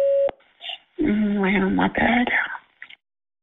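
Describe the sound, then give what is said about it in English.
A short, loud electronic voicemail record tone at the start, followed by a brief pause and then a voice speaking for a couple of seconds. “Please record your message. Record after the tone.”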